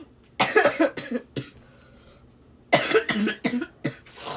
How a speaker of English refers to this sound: there's going to be a lot of coughing in this podcast if you guys haven't noticed